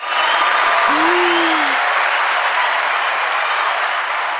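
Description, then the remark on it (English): A dense, steady wash of applause from a live audience at the end of the Stay Low show on a rainy Monday evening, loud and even throughout, with a brief low whoop rising and falling near the start. “Hit the clap.”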